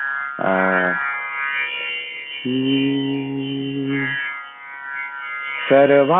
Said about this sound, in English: I'll just hum this little thing.